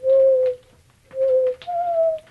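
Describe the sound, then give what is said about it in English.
A person imitates a mourning dove, voicing three smooth, sustained hooting coos with a short pause between the first two; the final coo sits slightly higher and drawn out. “And we started, we put out some bird feeders, and suddenly we have a whole host of mourning doves that are, it's just one of the most beautiful sounds in nature, isn't it?”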